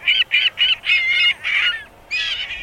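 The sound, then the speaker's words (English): A gull gives a rapid series of loud, harsh, nasal calls, about seven in quick succession with a brief pause before the last two, with no talking. “In Chicago, young ring-billed gulls are heading for Lake Michigan.”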